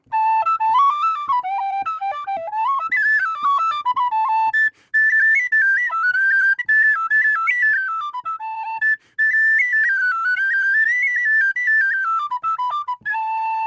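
A tin whistle plays a brisk, ornamented Irish reel for St. Patrick's Day, bright high notes running in quick continuous phrases with brief pauses for breath, clear with no voices.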